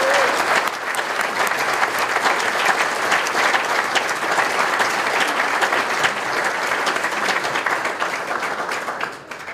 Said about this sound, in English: So ladies and gentlemen, if you would, one last round of applause for our inductees for 2021.